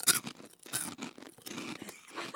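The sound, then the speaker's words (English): Crunching as someone bites into and chews crisp Poppables snacks, a series of irregular dry crackling bursts lasting a couple of seconds with no talking. “See if you can crunch that.”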